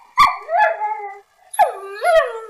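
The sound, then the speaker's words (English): A dog whimpers twice, each a drawn-out, high-pitched whine that wavers and slides in pitch, separated by a brief pause. The cries are fairly loud, with no talking. “I think a whimpering dog will send somebody running faster than a crying baby.”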